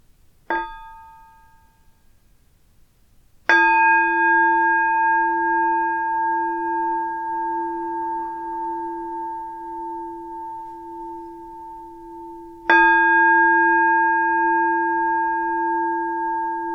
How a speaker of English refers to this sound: And I'm going to begin with three sounds of the bell and the usual settling in introduction.